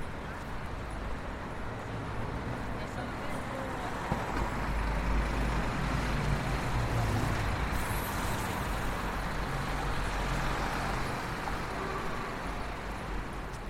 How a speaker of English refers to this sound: So we're walking down Piccadilly now on the south side of the street. The traffic is never going to stop.